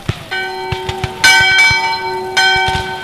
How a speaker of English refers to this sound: A Confederate volunteer remembered hearing the church bells in town ringing for an afternoon service as the battle got underway.